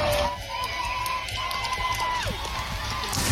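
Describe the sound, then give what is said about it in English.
A loud crowd cheers and roars continuously as a fight kicks off, a dense wall of voices with a thin whistling tone running through the middle that slides downward near the end. “And then they cheer.”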